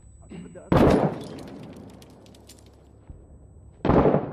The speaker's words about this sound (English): Oh! Fuck, that scared the shit out of me. Hey, careful. Get back. He's shooting from outside, right?